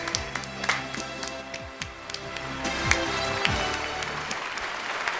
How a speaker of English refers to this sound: What, I don't get applause for fuck's sake? God damn it!